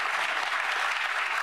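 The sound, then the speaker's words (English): A crowd in a played recording cheers and applauds in a dense, steady wash of clapping that holds at an even, fairly loud level throughout, with no one speaking over it. “Oh, wait, they're cheering for that.”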